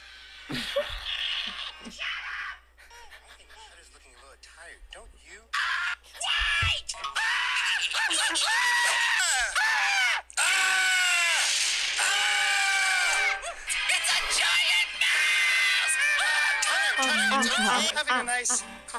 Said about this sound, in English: This video is just Tutter screaming for 47 seconds.